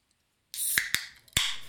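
An orange Rockstar energy drink can being cracked open: a sudden fizzing hiss, sharp metallic clicks and a final snap over the steady carbonated hiss, with no voices.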